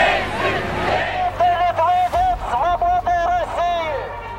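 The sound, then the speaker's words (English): A crowd chants a single word, "freedom," over and over in loud rhythmic bursts, rising out of a murmur of many voices and keeping a steady, insistent beat. “They're shouting, freedom, freedom.”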